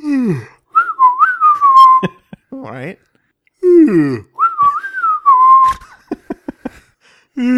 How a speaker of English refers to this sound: Perform the following actions. Cover your eyes, yawn, and whistle. Okay, ready? Yes.